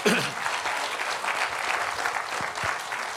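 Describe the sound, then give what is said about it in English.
A church audience claps steadily as a clap offering of praise to the Lord during a sermon, a dense patter of many hands at fairly even loudness throughout, with no voices standing out. “Come on, give the Lord a clap offering of praise for a moment.”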